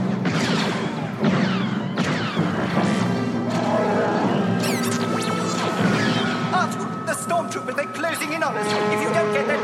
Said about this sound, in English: And, attempting to escape to the Millennium Falcon, Leia, Lando, Chewbacca, C-3PO, and R2-D2 are trapped by a locked blast door. As Imperial stormtroopers open fire on them.